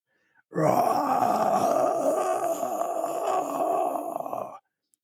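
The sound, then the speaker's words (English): A human voice imitates the roar of a dragon flying down to about 30 feet above the ground, with one loud, rasping growl held steadily for about four seconds, then cut off abruptly. No other sounds accompany it. “And it flies back down to about 30 feet above the ground. And it just roars.”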